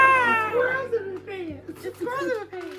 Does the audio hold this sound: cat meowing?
yes